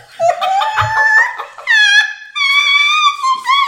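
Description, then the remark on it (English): Dogs howling together in response to a squeal, several high, wavering voices overlapping in long drawn-out cries that rise and bend in pitch, loud, with brief pauses between swells. “I think my dogs just howled from that squeal.”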